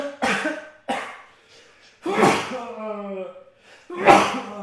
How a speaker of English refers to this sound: Sneeze.